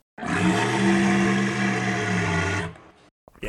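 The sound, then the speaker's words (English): A single loud, sustained dinosaur roar with a deep, rumbling growl lasts about two and a half seconds, then cuts off abruptly, followed by brief quiet and faint noise. “Can you throw in a dinosaur sound right there?”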